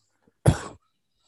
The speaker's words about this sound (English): Already coughing into the mic.